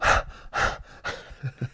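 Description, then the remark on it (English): A voice imitates heavy panting while running: three loud, breathy gasps in a steady rhythm, trailing into a couple of short, low grunting breaths. “I'm panting.”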